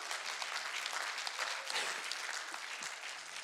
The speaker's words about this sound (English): Now, if that only gets five people in this room to clap, you don't know Jesus as King of Kings.